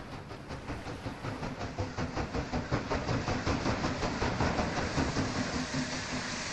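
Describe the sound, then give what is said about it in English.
A train rumbles along with a steady rhythmic clatter of wheels over rail joints, the beats gradually spacing out as it slows and pulls into a station on the shore of the Mississippi in the 19th century, with a broad hiss of steam and metal noise throughout. “And just over your shoulder is the sound of a slowing train as it pulls into station.”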